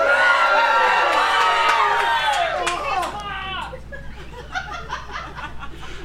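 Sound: audience screaming and cheering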